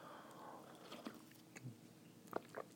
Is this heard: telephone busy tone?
no